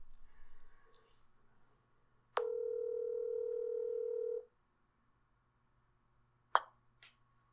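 A phone ringback tone sounds once on a speakerphone call, a steady electronic buzz lasting about two seconds, followed by quiet and then a couple of sharp clicks as the line connects.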